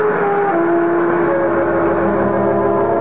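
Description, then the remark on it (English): A hired car carrying three people to the Bonoc Hotel drones steadily while driving, a loud continuous engine hum with a tonal whine that drops slightly in pitch, then holds even and unbroken. No one speaks. “A few minutes later, Paula, Siva, and I were riding to the Bonoc Hotel in silence.”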